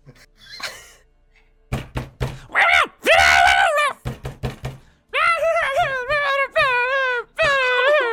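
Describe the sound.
A voice imitates goblin noises, wailing, whining groans that rise and fall, broken up by a burst of sharp, loud bangs like pounding against a door with a flip-flop under it.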